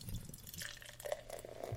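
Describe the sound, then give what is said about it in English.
A 4% alcohol-by-volume beer from a freshly opened, fairly full container pours steadily into a glass, a continuous stream of gurgling and fizzing with small bubbly splashes, heard on its own with no one talking; the beer is very clear and light straw-colored with a white foamy head. “And the pour. Oh, this one's kind of full, so here we go.”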